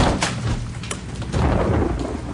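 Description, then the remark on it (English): A loud thunder crash that rolls on as a heavy, sustained rumble with a couple of sharp cracks near the start, all under a steady hiss. No one speaks. “All the candles blow out, and a terrifying specter is outlined in lightning.”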